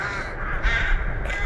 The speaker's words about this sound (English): The crows caw above this city of Borodyanka. Perhaps they sense the death here.